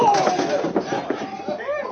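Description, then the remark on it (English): A couple of dull, heavy punch thuds land in quick succession, knocking a man out, amid grunting voices and a rising vocal exclamation at the end. “Oh! You knocked him out.”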